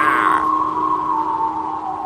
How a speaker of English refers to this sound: As the wind blew, Thomas heard the whistling and wailing sound again, and he began to feel scared.